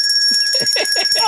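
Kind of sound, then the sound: household object, small hand bell ringing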